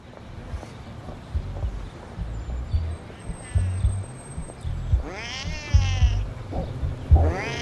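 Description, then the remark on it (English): A cat yowls loudly: one long, wavering caterwaul, then the start of another, with low thumping and rustling noises underneath. “I threw the cat.”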